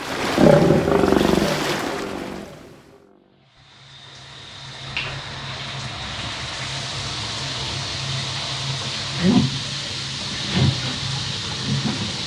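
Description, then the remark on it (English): A shower runs with a steady hiss of spraying water. It opens with a louder rumbling gush and a brief dip, then settles into constant spray with a few faint knocks. “would take a shower with me? It would be our first married shower.”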